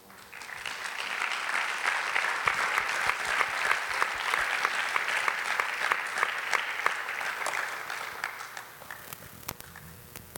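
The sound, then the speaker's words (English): A crowd applauds steadily for about ten seconds, a dense wash of many hands clapping at once, holding level before thinning out slightly toward the end. “So you need people and you need heaven, and I want to applaud you again for doing what you're doing.”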